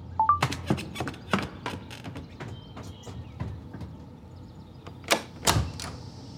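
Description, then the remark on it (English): A neighbor at the front door: a string of sharp, irregular knocks and taps, moderately loud, with a couple of heavier thumps near the end and no voices. “Someone's at the door.”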